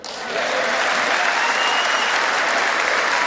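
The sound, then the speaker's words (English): A large audience in a chamber, people getting up, breaks into sustained applause after a line about record-low unemployment rates, a dense wash of clapping that swells quickly in the first half second and then holds steady and loud throughout. “People start getting up and applauding again.”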